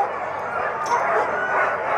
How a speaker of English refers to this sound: When it's finally time to harness up, they all know it's time. All it takes is one dog getting hooked up to the sled for every single dog in town to start going crazy.